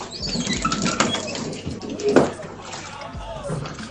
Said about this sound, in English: So, you guys want to hear how noisy my washing machine is?